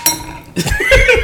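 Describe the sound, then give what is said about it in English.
Drinking glasses clink together once in a toast at the end of the season, a bright chime that rings briefly before voices break in and talk over the rest. “Salud, guys. Salud. Cheers.”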